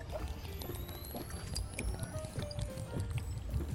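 Water pours steadily into a cup as the final step of making coffee from a Cometeer coffee pod, a continuous splashing gurgle whose hollow ringing pitch slowly rises as the vessel fills. It's moderately loud, with no voices.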